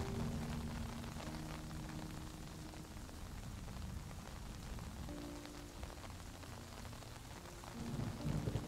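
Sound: rain falling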